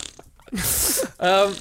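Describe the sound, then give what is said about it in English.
A voice imitates a fart with a loud, hissy blown burst and sputtering low squeaks, followed by a second buzzy, droning raspberry of about half a second. “… farts in response to that.”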